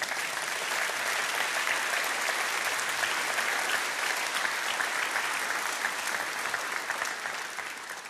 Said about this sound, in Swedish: Du och jag, ja, det kan du ge Herren en applåd för.